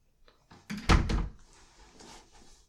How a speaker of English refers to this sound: close the damn door.